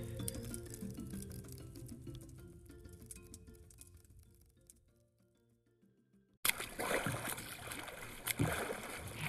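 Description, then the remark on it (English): Soft tonal music fades to near silence, then loud splashing and churning water breaks in abruptly as oars pull a boat through Tannin Lake. “Row, row, row your boat gently on Tannin Lake. Rowing and rowing and rowing and rowing, watching Aphilion swim.”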